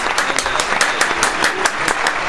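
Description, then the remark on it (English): A single person claps for himself steadily, about a dozen sharp, evenly spaced claps in quick succession, fairly loud, with no voices over them. “I gotta clap myself, bro.”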